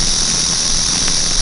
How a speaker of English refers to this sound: You had better move when you hear that sound, for the rattlesnake is not talking to another snake, but is warning you to stay away or he will strike you with his deadly fang.